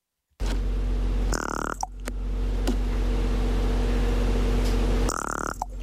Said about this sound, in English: I guessed it was some sort of a pig, and it was a raven. It was a raven, yes.